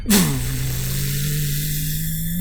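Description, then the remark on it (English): A sudden, loud jolt of a car being rammed from behind by a white truck carrying a horde of people, a brief crunching impact that shakes the car, followed by a steady, low engine drone that carries on without any talking. “and you feel as the car itself just kind of shakes and jolts as you've been hit from behind.”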